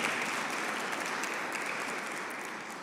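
A crowd at a Saviours' Day gathering applauds steadily for a speaker, a dense wash of many hands clapping at once, holding a fairly even level before easing off slightly toward the end.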